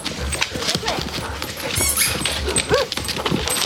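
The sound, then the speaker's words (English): A dog whimpers and gives a few short, high yips amid a busy, clattering background, with a sharper yelp standing out near the end. “Good dog. Okay, now go play.”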